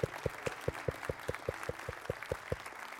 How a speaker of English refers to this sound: That's right. That deserves a clap.